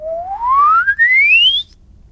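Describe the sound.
A single clear human whistle, the glissando whistling technique, slides steadily upward in pitch over about a second and a half, with a brief dip in the middle, loud against a quiet background.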